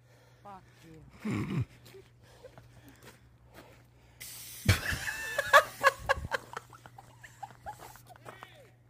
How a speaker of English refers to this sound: They're just looking at each other, and you know she's looking at him like, unveil the pepper spray.